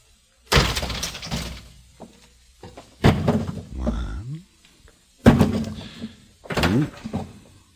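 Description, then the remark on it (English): A door is worked open: several loud knocks and thuds from the latch and frame, with a creaking, groaning squeal as it moves, in separate bursts. “We'll open the door.”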